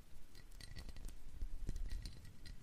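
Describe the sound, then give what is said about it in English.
A small glass honey jar clinks repeatedly, with light tapping and ringing chinks scattered irregularly over a soft rustle of handling, no voices present. “This glass honey jar, very sweet.”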